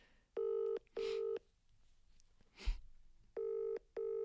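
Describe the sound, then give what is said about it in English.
A phone ringing tone heard through the line on speaker, as a woman phones her husband: two double-ring bursts of a steady buzzing tone separated by a pause, with a soft click in between and no one talking. “I'm actually going to phone him on air.”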